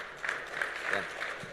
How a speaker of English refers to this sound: Ladies and gentlemen, I think we should have a round of applause for the newly turned pro,